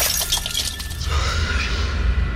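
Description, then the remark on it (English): A hurled glass of holy water smashes loudly against a wall, a bright crashing burst followed by a brief scatter of tinkling shards fading into a low rumbling background. “The glass of holy water hurled past my face and smashed against the wall into pieces.”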